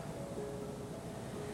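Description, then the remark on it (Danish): A faint, steady wash of sea surf at night, a soft continuous rumble and hiss with no distinct wave breaks and no voices. “Jeg tror, man kan høre havet.”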